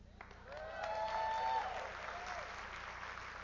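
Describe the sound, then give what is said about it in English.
An audience bursts into sustained applause, a dense wash of clapping that swells within the first second, peaks briefly with a few cheers, then holds steady at a moderate level. “I kind of want to clap with you, but really all that means is I'm getting old.”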